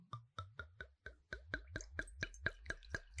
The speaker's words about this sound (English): A very, very, very, very good pour for a Napa Cabernet. Beautiful.